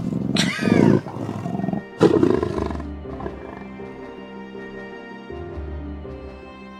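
Two loud, rasping roars from a big cat, the second sharper than the first, trailing off into a low sustained rumble and grumbling growl.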